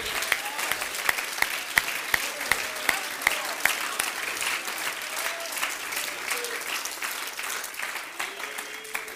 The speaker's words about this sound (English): Would you clap your hands to the Lord today?